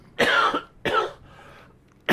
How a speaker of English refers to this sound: I'm going to cough.